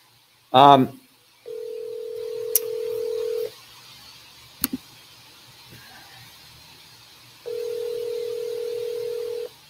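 A steady telephone dial tone hums for about two seconds, drops away amid faint clicks and background noise, then returns for another steady two-second stretch, preceded by a brief burst of sound.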